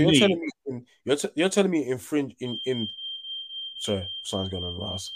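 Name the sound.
smoke alarm beeping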